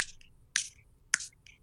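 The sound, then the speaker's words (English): Sharp, crisp finger snaps ring out in a steady rhythm, about three or four clean clicks spaced roughly half a second apart, clear with no voices. “Like if you had to go to your happy place and you had to snap your fingers and you can be anywhere doing anything, where would you go?”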